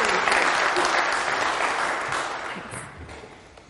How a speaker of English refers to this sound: Give her a clap.